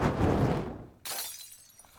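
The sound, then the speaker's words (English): A thrown Molotov cocktail's glass bottle smashes with a sudden bright crash after a second of low, rumbling whoosh, the sharp shattering noise trailing off into scattered tinkling fragments. No one speaks. “This Molotov cocktail is brought to you by communism!”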